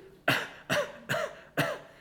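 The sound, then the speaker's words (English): Four forced, evenly spaced coughs in a row, each a short harsh burst, moderately loud, with no talking in between, a child faking a cough in the morning. “Are you sick? I heard you coughing.”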